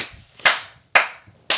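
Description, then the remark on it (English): Three sharp, loud hand claps at a slow, steady pace, each with a short ringing tail, with no voices over them. “You clapping for him because he was fucking knee along?”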